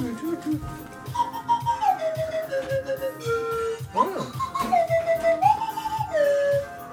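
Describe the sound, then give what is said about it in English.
A breathy Peruvian whistle plays a slow, wavering melody of held notes that step downward in phrases, clear over a soft rhythmic thumping underneath. “Peruvian whistle.”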